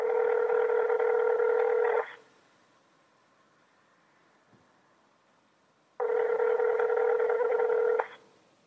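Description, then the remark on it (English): A telephone ringing tone heard through the line of an unanswered call made from a mobile phone in a hallway: two long, steady buzzing rings of about two seconds each, separated by a four-second pause with faint line hiss in between. “It just rang and rang.”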